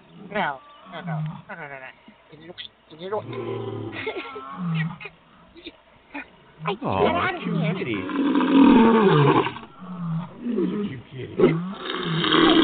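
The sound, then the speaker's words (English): People talk over a deep, rough lion roar that rises in the second half, loud, with growling bursts that swell and fade. “I wasn't supposed to bring the lion this time?”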